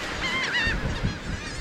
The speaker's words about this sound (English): Here at Reed's Beach, small flocks of birds crowd the shore and swoop through a pastel sky.